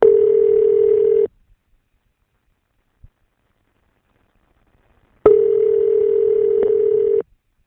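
A telephone dial tone at the start of a call: a steady, clear electronic hum in two bursts, about one and two seconds long, separated by several seconds of silence, with no voices.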